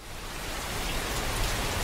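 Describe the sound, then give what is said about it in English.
Steady rain falls in a dense, even hiss with soft patters of drops hitting a surface, holding a constant moderate level with no voices. “This is more along the lines of ambient music, but sounds of nature like birds and the wind and the rain creates a very calming effect.”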